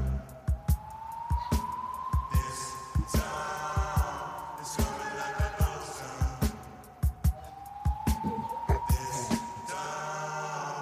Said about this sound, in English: But it also sounds like a siren.